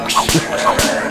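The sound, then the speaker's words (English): Two sharp, snappy whip-crack sounds about half a second apart, each preceded by a brief whooshing swish, fairly loud; they seem to be made by a voice imitating a bullwhip. “You got a bull whip. I swipe them like...”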